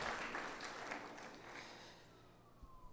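An audience claps steadily, a dense patter of many hands that stays fairly loud before gradually thinning and softening toward the end, with no voices over it.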